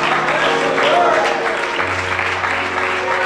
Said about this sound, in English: Everybody put your Bibles down, clap your hands, and shout, God bless the word.